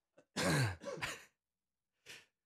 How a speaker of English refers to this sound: We're both trying to control our coughs here.